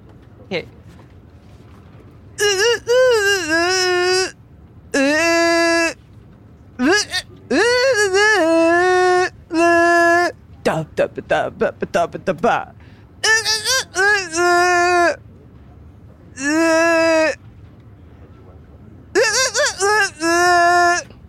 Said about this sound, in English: So this is Dino Country with the grassy plain. I'm gonna do my best to just kind of hum the song that I composed for this level.